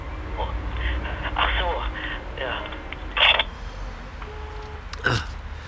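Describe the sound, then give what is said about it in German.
A telephone receiver is hung up with a sharp plastic clunk, followed by a second brief knock a couple of seconds later, over faint muffled voices and low background hum. “Auflegen und zu den anderen setzen.”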